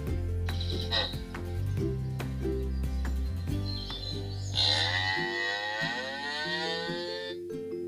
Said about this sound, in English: What is this? Yeah, it's animal sounds.